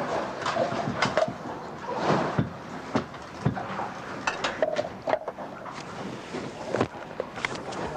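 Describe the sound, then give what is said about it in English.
Clattering and scraping of a spoon against a metal pot on a gas stove as canned stewed steak and canned potatoes are mixed into goulash aboard a boat at sea, with irregular knocks and clinks over a steady background hiss, moderately loud, no talking. “Put on the gas, mix the whole lot up together. Massive goulash.”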